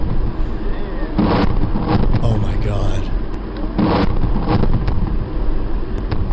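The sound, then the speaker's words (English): A huge explosion in a played video: a loud, sustained low rumble roars through the whole recording, with a couple of sharper bursts of blast-like noise, while a voice exclaims in surprise over it. “Huge explosion, folks. Huge explosion. Ridiculously huge explosion.”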